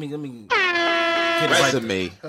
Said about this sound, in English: Let me get my air horns right.